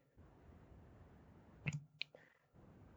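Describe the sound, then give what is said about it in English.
Two quick, crisp computer mouse clicks in a row, a double click on the recommended-by-guide option in a game, over a faint steady background hiss, with no voices. “I'm double clicking the recommended by guide.”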